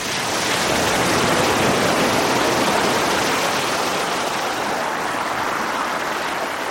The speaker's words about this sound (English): Kim Wilson recorded these California surf sounds.